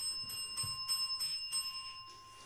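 A small bell rings in a rapid, steady series of about seven metallic strikes, fairly soft, with no one speaking.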